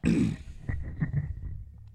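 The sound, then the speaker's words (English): A man clears his throat: one low, gravelly rasp followed by a few shorter guttural hacks, with no talking. “Let me clear my throat.”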